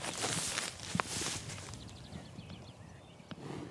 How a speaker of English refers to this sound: So I've got Bessie with her one-week-old calf and I just put her onto a new strip. The sound of cattle eating long grass is one of the great joys of my very small life.